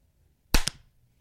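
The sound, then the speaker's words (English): A single loud, sharp hand clap for audio synchronization before a recording rings out on its own against near silence, followed a split second later by a fainter snap before it quickly dies away. “That clap, that synchronizing behind the scenes look.”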